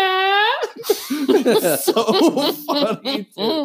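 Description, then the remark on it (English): A voice blurts out a loud, buzzy imitation of a fart, followed by a burst of laughing and animated vocal noises, fairly loud. “sitting in like a big stall in the bathroom, and he's like me sitting there trying to shit silently, and then he like does a really loud fart, and then it shows the outside of the stall.”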